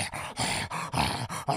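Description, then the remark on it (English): A person imitates the dog Chonks growling right up close to the microphone, a rough, throaty snarl repeated in about five quick bursts with brief breaths between. “Chonks would still be near the microphone going.”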